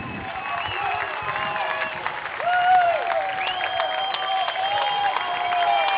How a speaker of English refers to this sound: I'm going to take off my headset and hang it over the edge here so that on this fourth down, you can call the play, and I think the crowd noise will let everyone know exactly what happened